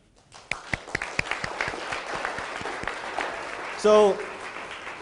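A crowd at a Vancouver Entrepreneurs Group event breaks into steady, dense applause as a man is called up, with a few sharp individual claps standing out early on and a brief vocal cheer rising over the clapping near the end.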